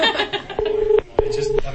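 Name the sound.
telephone keypad dialing tones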